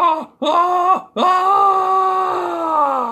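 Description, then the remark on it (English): A spooky, loud wailing scream of screaming dice in three bursts: two short cries that drop in pitch, then a long sustained howl that slowly sinks lower. No talking. “And it's the dice are screaming.”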